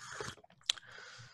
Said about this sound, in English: Let me just sip my tea. Hold on.